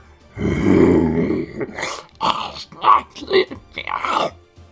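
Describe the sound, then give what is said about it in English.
A voice imitates a creature roaring in the dark: one long, rumbling, throaty growl, followed by several shorter snarling bursts and grunts, fairly loud with no other sounds around. “You hear the sound of a creature just roaring in the dark.”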